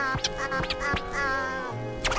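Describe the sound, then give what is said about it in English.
A bird calling with nasal, duck-like quacks, several short harsh bursts over a steady honking tone, fairly loud, with no talking. “A bird? Yeah.”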